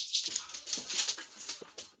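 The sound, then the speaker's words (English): Dogs whine and yelp excitedly as someone comes home, in a rapid, continuous stream of high-pitched whimpers, moderately loud, with no talking over them. “The dogs are going nuts.”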